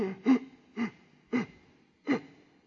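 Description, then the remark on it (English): A voice imitates the labored, wheezing breathing of a man in his 30s bent over a chair in a class: four loud, raspy, strained gasps spaced evenly about half a second apart, with no words spoken. “And he was bent over this chair like this. And you could hear him breathing all over the room.”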